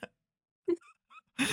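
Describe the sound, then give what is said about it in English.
A few brief wet mouth noises of a cough drop clicking and being sucked in the mouth come in short separate bursts, ending in a louder smacking rustle. No one speaks. “It's just a cough drop.”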